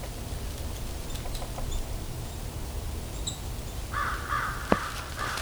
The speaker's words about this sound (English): Here comes a crow. There goes the crows. These are American crows.